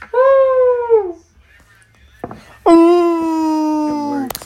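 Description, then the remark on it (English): Two loud, sustained screams into a microphone to test whether its level spikes, the first shorter with a falling pitch, the second long and steady before trailing down, with a few thumps in the pause between. “How fat is your mama's Scream in the mic.”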